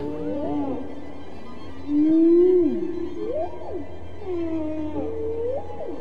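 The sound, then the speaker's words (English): Dr. Roger Payne's recorded whale songs, used in the concerto And God Created Great Whales by the New York Philharmonic: long, sliding moans and upswept whoops overlapping one another, with a low steady rumble of water noise beneath, fairly loud. “Payne's whale songs are now part of a concerto called And God Created Great Whales, played this week for the first time by the New York Philharmonic.”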